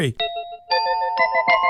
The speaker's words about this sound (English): That's the doorbell.